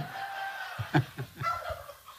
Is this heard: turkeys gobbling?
yes